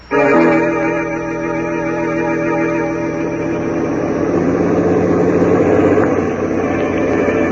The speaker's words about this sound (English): We rode home through the foggy night in the truck, the ape and I.